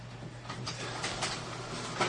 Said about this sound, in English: Yeah. That's the printer.